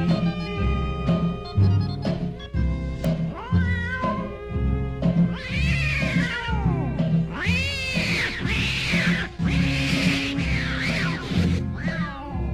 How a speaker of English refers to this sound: Now on that very same night, now that old tomcat started a fight, and this is the way it all did sound to me.